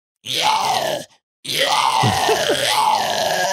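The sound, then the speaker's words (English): A raspy, gritty "tunnel throat" vocal growl in two bursts, a short one and then a longer, sustained one, noisy and throaty like a zombie snarl, with a brief gap between them and no talking. “And like, tunnel throat is probably my favorite one because. It sounds kind of like a fucking zombie when you do it.”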